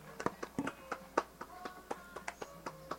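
A small group applauding a guest on the Cat Man Says Tonight Show: a scattered, uneven patter of sharp claps over a few seconds, moderately quiet, with a faint steady tone in the background and no talking.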